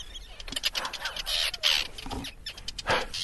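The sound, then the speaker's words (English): A colony of Arctic terns on a beach calls in alarm as a person walks right through it and the birds attack from the sky, a dense, continuous chorus of harsh, high, overlapping screeches and rasping chatters, loud throughout with sharper bursts standing out, and no one speaking. “And walking right through a tern colony, and they're not happy about it.”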